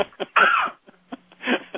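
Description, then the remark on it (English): A single loud, explosive sneeze bursts out with a breathy, hissing rush, preceded and followed by softer sniffs and short breathy noises. “And I have to sneeze, which is horrible, and I can't cut you off because nobody will hear you.”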